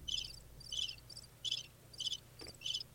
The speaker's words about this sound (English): Yeah, that's my crickets.